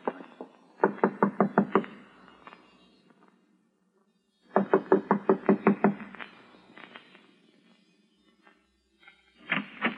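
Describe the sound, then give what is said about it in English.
Two bursts of rapid, solid knocking on a door, each a quick series of about eight raps, separated by a pause, with a few more knocks starting at the very end. “I'm going to knock on the door now and keep smiling to show we're friendly and let me do all the talking.”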